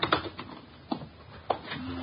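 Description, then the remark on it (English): A refrigerator door is opened and its contents searched for letters: a few sharp mechanical clicks and clunks spaced about half a second apart, with faint rattling in between, fairly quiet. “Don't pass up that refrigerator.”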